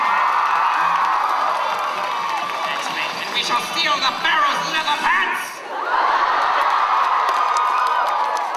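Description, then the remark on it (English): A crowd cheers and applauds steadily, with whoops and shouts rising over a dense wash of clapping while a voice speaks over it; the noise dips briefly, then swells back up. “Keep the applause from Yugia.”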